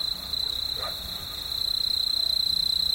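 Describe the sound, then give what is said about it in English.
A quiet desert soundscape at dawn on Gray Ranch, a 500-square-mile nature conservancy easement in the panhandle of New Mexico, recorded by Bernie Krause: insects hold a steady, high-pitched buzzing drone throughout, over a soft low rustle of background noise, with one brief faint chirp, no voices, no planes or cars. “We leave you this week in desert solitude.”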